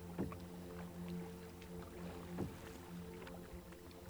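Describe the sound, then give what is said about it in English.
A kayak paddle dips and splashes in clear sea water along a cliffy shoreline in two slow, rhythmic strokes about two seconds apart, fairly soft, over a low steady hum. “You've been paddling along, hugging the cliffy shoreline for several hours now.”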